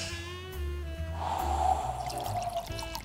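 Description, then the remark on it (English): Rosé wine pours steadily into a glass for a couple of seconds, a continuous splashing trickle with a faint rising tone, over a low background hum. “He's in with Hamish now, pouring.”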